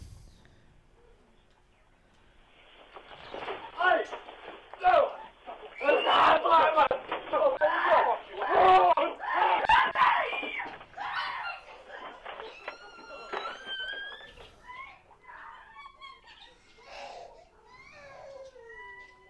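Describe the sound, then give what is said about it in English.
Loud, frantic screaming and shrieking from several voices in security camera footage, muffled and tinny, peaking midway and then tapering into thinner high-pitched cries. “It's probably gonna, the screams are probably gonna sound disturbing.”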